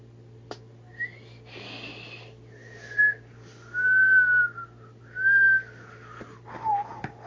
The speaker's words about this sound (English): Thanks for joining me on top of this mountain where the wind is whistling us away.